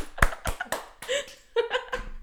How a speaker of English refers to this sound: Seneca the Younger, everybody. Round of applause.